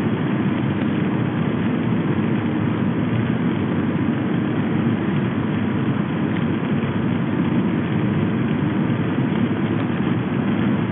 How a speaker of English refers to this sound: I felt the change in the car engine more than I heard it.